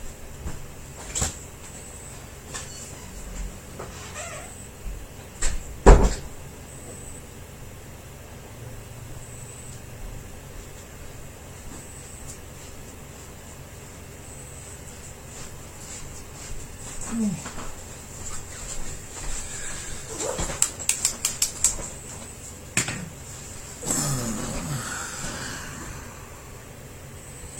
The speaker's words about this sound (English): Okay, that noise was one of our other cats getting into his little bat cave, which is on that far side of the room. So that was the noise I was hearing.